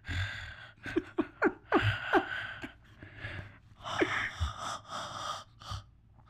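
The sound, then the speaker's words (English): A voice imitates creepy heavy breathing, a series of raspy, wheezy gasps and exhales in an uneven rhythm, fairly loud with no words spoken. “That was a really good breathing impression.”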